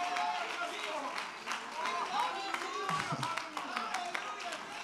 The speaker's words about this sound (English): Let's stand to our feet, clap our hands unto the Lord. Hallelujah.